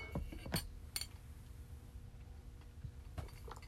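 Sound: coffee cup clinking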